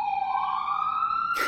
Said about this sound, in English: The police sirens are chiming in on this conversation.